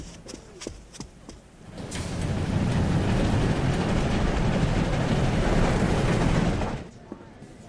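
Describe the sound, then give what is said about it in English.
A few sharp clicks and taps, then a loud, steady roar of a train carriage rattling over the rails for several seconds, heard while passing through the vestibule at the back of the dining car, before the noise suddenly cuts back down. “Quickly through the vestibule at the back of the dining car.”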